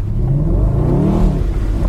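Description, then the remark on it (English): A loud car engine revs hard and climbs in pitch as it accelerates along a small, almost private road leading to paddock club parking, a sustained throaty roar with no voices over it. “And I thought you might like to hear this engine.”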